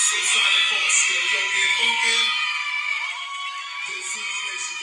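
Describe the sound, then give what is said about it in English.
A loud, sustained crowd roar in the intro of a song being played, with cheering, whoops and high-pitched shouts blending into a continuous wash of noise, dipping slightly near the end before swelling again. “The crowd is high.”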